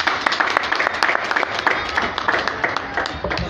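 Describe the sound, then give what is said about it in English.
A church audience claps steadily for the youth director as he comes up, with dense overlapping handclaps forming a continuous, fairly loud wash of applause that keeps an even level throughout. “Just clap for him even as he comes.”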